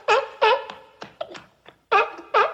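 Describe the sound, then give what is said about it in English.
A person imitates seal barks: a quick series of loud, honking, voiced barks in uneven bursts with short pauses between them, and no talking. “Isn't it going to be difficult to get through this podcast with a bunch of the conversation devoted to barking noises?”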